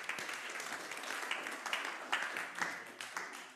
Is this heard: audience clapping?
yes